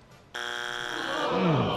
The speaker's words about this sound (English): First strike of the night. That buzzer does still work.